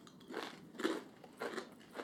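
Someone crunching on a dry tandoori pita chip, with four crisp, crackly bites in a steady chewing rhythm. The crunches are fairly soft, and no one speaks.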